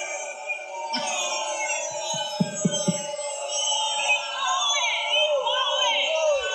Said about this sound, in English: And there it went. They're still booing. Oh, wait. I want to see him get booed off. Sit down. Y'all not going to boo me. He said, y'all not going to boo me.